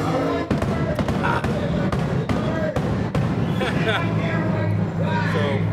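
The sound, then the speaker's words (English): Repeated sharp bangs and crackling pops of fireworks going off outdoors, coming irregularly every second or so over a busy, rumbling background with faint muffled voices. “Did Miles go watch the fireworks?”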